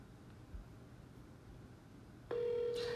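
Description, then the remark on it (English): After a couple of seconds of quiet hum, a loud, steady telephone ringing tone of an outgoing call comes through the line and holds to the end, with no one talking. “Pick up the phone. Pick up the phone. I'm calling.”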